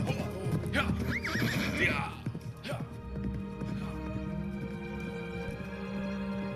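A samurai's horse lets out a loud, shrill whinny, followed by a steady clatter of hooves clip-clopping over a low, constant rumble of background noise.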